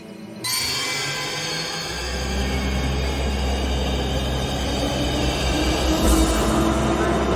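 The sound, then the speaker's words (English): An underground train rumbles in, its deep low roar building steadily and filling the space as it draws closer, with a metallic hiss and clatter layered over the heavy drone. “It's all done visually and, you know, they end up both running through the underground. Yeah. And we hear the train coming”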